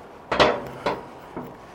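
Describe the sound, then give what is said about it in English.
Three hollow metallic clanks, uneven in spacing and loudness, as loose, poorly laid plates rock and knock underfoot while someone walks across part of a basin at a former wharf, the first the loudest, over a faint steady background hum. “The plates you can hear, I'm walking across another part of the basin. They're not very well put down, these.”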